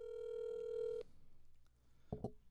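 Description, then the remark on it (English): A telephone call to Boesky's bar goes through: a steady electronic ringing tone sounds for about a second, then cuts off abruptly, followed after a short pause by a brief handset clatter. “Make a phone call. Make that call.”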